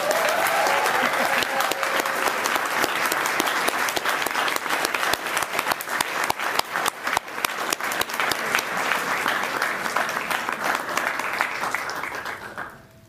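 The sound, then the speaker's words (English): A crowd applauds the honorees at a community awards ceremony, dense overlapping clapping that stays loud and even for about twelve seconds before tapering off quickly at the end. “All right, so before I hand it over to Commissioner Lusala to close the ceremony, let's all give all the honorees one more round of applause for all the fantastic work they've done in our community.”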